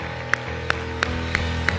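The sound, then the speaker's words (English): A church audience claps hands together in unison during a worship service, five sharp, evenly spaced claps on a steady beat, over a continuous low musical drone with no talking. “The Bible says, oh, clap your hands.”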